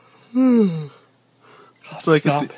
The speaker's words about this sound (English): Stop yawning.